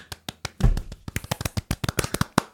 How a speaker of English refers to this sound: Oh, we can add in a round of applause sound effect or something. Can't we just do it?